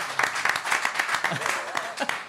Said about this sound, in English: Hey, great job, everyone. Now we're done. Just give yourselves a round of applause.